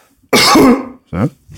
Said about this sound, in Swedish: Hostade i handen. Han hostade i sin smutsiga näck.